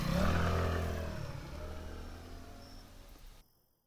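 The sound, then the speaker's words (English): A small electric scooter motor is cranked and sputters to life, chugging steadily; its low rumbling drone gradually fades as the rider pulls away, leaving near silence at the end. No one speaks. “And he gets on his scooter, and he cranks a little electric motor, and he chugs away.”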